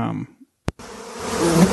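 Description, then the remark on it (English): Bees buzz in a dense, continuous drone that swells slightly toward the end, following a brief quiet stretch and a sharp click near the start. No one speaks. “Mosquitoes? Flies? Bees? Right, my sister's terrified of bees.”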